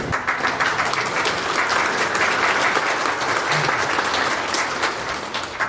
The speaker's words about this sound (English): So let's do another round of applause and thank you for the people who did it.